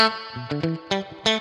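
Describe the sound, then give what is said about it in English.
A clean electric guitar plays a quick phrase of bright, plucked notes and chords through an amp with a JBL speaker and a little reverb, fairly loud, with no voices. “Go back to the JBL, little reverb, without getting in too much trouble.”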